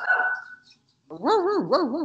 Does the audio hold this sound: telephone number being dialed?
no